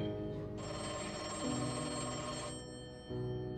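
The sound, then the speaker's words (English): A police department telephone in Berkeley, flooded with calls giving tips about a kidnapped child, rings loudly and steadily for a couple of seconds, a bright metallic trill, then stops briefly before starting to ring again; no one speaks. “Berkeley's PD phones were ringing off the hook, all with tips on who had taken Christine”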